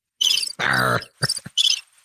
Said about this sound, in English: Oh, that's crickets. Okay, fair enough.